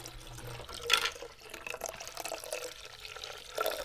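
Lager beer from a 12-ounce can of Garage Beer pours into a glass in a steady stream, added to a drink of rum, Sunny D and cherry American wild ale to make a shandy, with a soft fizzing wash of liquid and a couple of brighter splashes as the glass fills. No one speaks.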